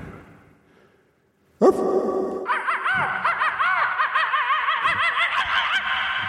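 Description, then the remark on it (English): After a brief quiet moment, a dog breaks into loud, rapid high-pitched yapping and yowling that continues without pause to the end, with no talking over it. “Your dog's got a pretty mouth.”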